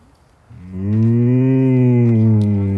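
cow mooing

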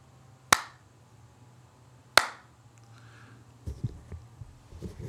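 rhythmic hand clapping

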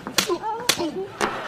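slap on a person

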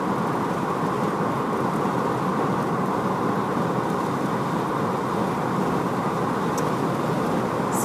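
rain with distant thunder

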